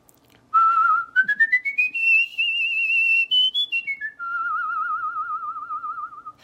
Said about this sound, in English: What's really cool is when you can whistle something really that goes really high and really low. So for example, I have to lick my lips a little bit.